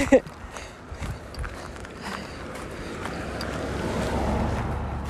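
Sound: car passing by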